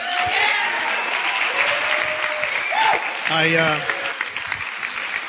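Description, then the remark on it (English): A crowd claps steadily in a dense, continuous wash of applause, with a few voices calling out and a brief whoop rising above the clapping partway through, as the audience welcomes a man. “I know the applause would be greater, but the geriatrics in the house don't have the energy to move their hands.”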